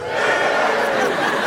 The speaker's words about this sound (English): And see how they sound less happy and less enlightened. Like, oh, their cheer wasn't, woo!